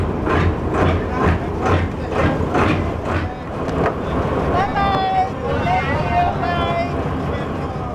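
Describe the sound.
A boat churns steadily through water, its low engine rumble and rhythmic surging wash filling the scene, with wind buffeting the microphone and faint, indistinct voices rising in the background.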